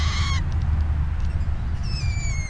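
Young grosbeaks give shrill, harmonic begging calls while being fed, one short burst at the start and a thin, drawn-out whistle near the end, over a steady low rumble.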